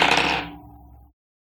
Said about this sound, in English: Great, roll plus sharp with my dice.